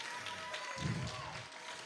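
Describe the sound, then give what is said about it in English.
An audience claps in a soft, steady patter of many hands, with a low swell of crowd noise rising briefly midway before settling back into the continuous applause. “Some of you don't want to clap right now because you got yourself a little idol.”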